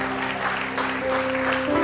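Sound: audience clapping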